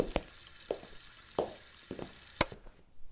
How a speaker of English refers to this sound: I was sure that I heard water running in here.